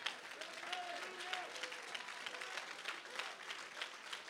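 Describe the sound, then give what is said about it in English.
An audience stands and claps their hands together in a dense, continuous wash of applause, steady and fairly loud, with a few faint voices calling out underneath early on. “Come on, you need to stand up on your feet and clap your hands and let the devil know, I am not a victim.”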